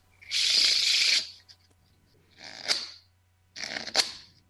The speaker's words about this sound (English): He always has a deck of cards in at least one hand. One hand shuffle.